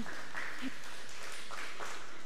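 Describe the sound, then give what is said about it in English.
An audience applauds with a steady wash of clapping, while a few cheers and whoops rise briefly above it, for a couple of seconds. “Yeah, you can cheer for that.”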